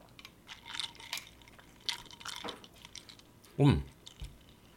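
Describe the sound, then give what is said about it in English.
Sipping of a cocktail: a few soft wet clicks and small liquid sounds, then one loud, drawn-in slurp near the end, with faint murmuring in the background. “All right, sips.”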